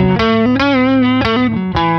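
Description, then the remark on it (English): An electric guitar with a Seymour Duncan Vintage Staggered Strat-style pickup played through a Klon-style light overdrive pedal into a Princeton Reverb amp, sustained chords and notes with a slightly gritty, warm edge, changing every half second or so, loud with no talking. “So right now it's just adding like a touch of hair. A little dirt, just a little bit of dirt.”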